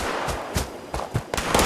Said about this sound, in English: It's gunfire. Over by the Wayward.